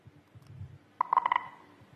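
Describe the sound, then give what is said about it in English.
A rapid cluster of about six short, mid-pitched electronic beeps in quick succession, one as each sprinter crosses the finish line of a race, following a low, soft rumble; the first beep is Usain Bolt, the last Jesse Owens. “you'll hear a beep as each man crosses the line.”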